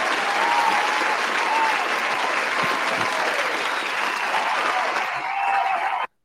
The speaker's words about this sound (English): Hey, round of applause for this pay-per-view, bro.